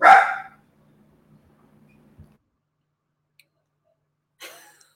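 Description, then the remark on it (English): A dog lets out one loud bark, followed by several seconds of near silence with a faint low hum, then a shorter, softer yelp near the end. “Don't mind her just yelling at her dog.”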